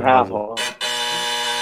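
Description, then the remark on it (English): A loud, flat electronic buzzer blares steadily for about a second, just after a short voiced sound and a quick burst of noise. “Ring the buzzer.”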